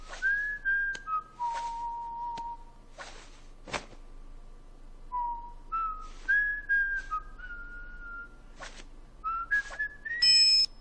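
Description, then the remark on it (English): A person whistles a slow, meandering tune of sustained notes and pitch slides, clear, with soft footstep-like scuffs and rustles between phrases; the whistling is heard in a night hub world of a video game. “This whistling can be heard somewhere in the Spagonia night hub world.”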